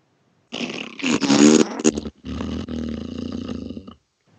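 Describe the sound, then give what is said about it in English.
A person blows a loud, buzzy raspberry imitating an old dad's fart, one sputtering burst followed by a second longer, rattling one, with no other sounds. “Old dad's fart.”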